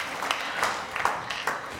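round of applause

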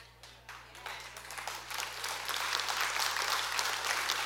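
light polite golf clap

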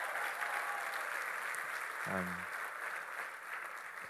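church audience applause

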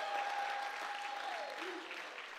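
audience applauding

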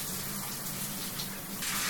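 shower water running

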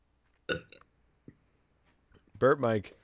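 burp into the microphone

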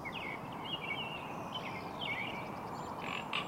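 frog croaking

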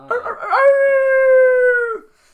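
wolf howl sound effect

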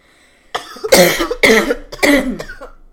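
cough

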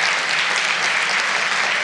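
audience applauding loudly

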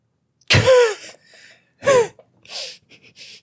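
gasping

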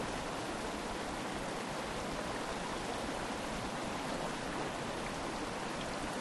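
flowing stream water

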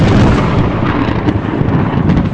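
thunderclap

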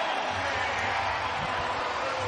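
basketball arena crowd cheering

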